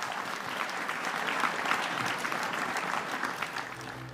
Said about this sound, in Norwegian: Takk skal dere ha. En herlig klapp.